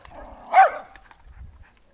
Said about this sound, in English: Another late night dog walker. So must be coming on 9:30 at night. It's pretty late for us. That was a big dog. I didn't recognize him.